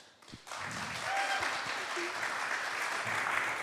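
Applause from an audience at the Whole Vineyard Church before a Bible reading starts abruptly after a brief quiet moment and holds steady as a dense, even wash of many hands clapping, with a few murmured voices mixed in.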